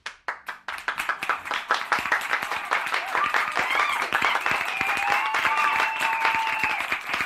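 A few scattered claps quickly swell into loud, sustained applause from a crowd at the presentation of the Juliet by Lazard at the Bradford, with some cheering and raised voices layered over the steady clapping.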